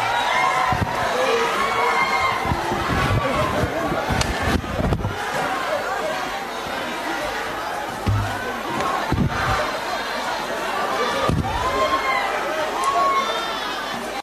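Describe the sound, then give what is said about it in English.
A loud, dense crowd of voices shouting and chanting together in parliament as EFF MPs chant for the sergeant at arms to remove President Zuma, with thuds and scuffling bangs as Parliament's Protection Services storm the house, the noise continuous and chaotic throughout. “EFF MPs broke into a chant calling on the sergeant at arms to remove President Zuma”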